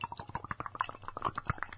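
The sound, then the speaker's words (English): A drink is poured from a can, a steady gurgling stream of liquid with fizzy, bubbling splashes running continuously for a couple of seconds, moderately loud and with no talking. “Here, I'm going to try and pour this, see if we can get some good.”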